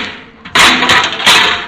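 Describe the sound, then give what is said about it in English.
Hammer blows on a car fender as it is being finished: a few loud, harsh metallic bangs, unevenly spaced, each trailing off in a rattling clatter, with no voices. “With you in a minute, Miss Brooks. I just want to finish this fender here.”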